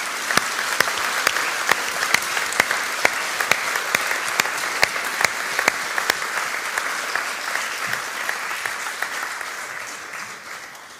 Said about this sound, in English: Why don't we all give them a big round of applause because they stay.